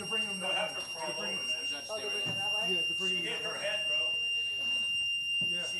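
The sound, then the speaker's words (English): A steady, high-pitched courtroom alarm rings without pause for the whole stretch, holding a constant shrill tone while several voices talk loudly over it. “I guess that sound is the alarm in the courtroom.”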